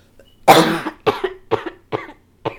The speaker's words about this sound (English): Are you okay? I am so sorry. I've been coughing this entire time, so yeah, no. Fine.